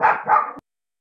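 A dog barks twice in quick succession, two loud, rough barks, then the sound cuts off abruptly into silence.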